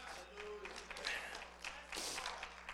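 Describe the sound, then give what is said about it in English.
An audience claps hands together as praise to the Lord in a dense, steady patter that swells louder toward the end, with a few voices calling out underneath. “Someone give the Lord a hand clap of praise.”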